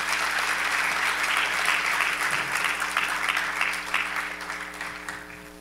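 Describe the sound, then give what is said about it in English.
An audience claps for people as they go, in a dense, steady wash of applause that holds for several seconds before easing off slightly toward the end, with a faint low hum underneath and no one speaking. “Please clap for them as they go.”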